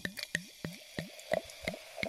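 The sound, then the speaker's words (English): Prosecco glugs out of a bottle in about seven quick, rhythmic gurgles, with a faint fizzy hiss underneath and no one speaking. “Here's some ASMR of me pouring it.”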